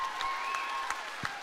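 Steady audience applause, a dense wash of many hands clapping at an even, moderate level, with a few sharper claps poking out and a faint whistle-like tone running through it.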